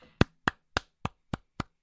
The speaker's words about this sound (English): That's me giving these two gentlemen a round of applause for putting together these interviews that literally floor me every single time I listen to it.